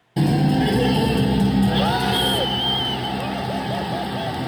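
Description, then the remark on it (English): A sold-out crowd at an Edmonton Stingers game erupts in wild, sustained cheering after a woman sinks a shot from center court, a dense roar of voices with high whoops and shouts rising above it, staying loud until the end. “and, after taking a few giant leaps, sunk the shot and the crowd, well, they went absolutely wild.”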